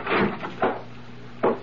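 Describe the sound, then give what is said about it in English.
A wooden bedroom door opens with a few short, fairly loud clunks and rattles, spaced unevenly, over a low steady hum with no talking. “I waited for the bedroom door to open, and it did.”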